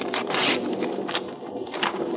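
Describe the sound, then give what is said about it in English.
Papery ripping and rustling as a telegram envelope is torn open, a few quick crackling bursts over about two seconds, with no one speaking. “Well, let's get at the telegram.”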